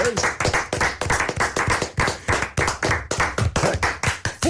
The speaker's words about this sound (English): Thank you, coach. Thanks for those additional claps. He deserves it.